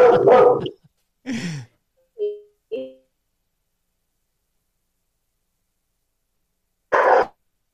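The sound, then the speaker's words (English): A Bouvier dog barks a few times, with a couple of short, higher yips in between, then falls quiet before one last bark. No one speaks. “I love the dogs too, by the way.”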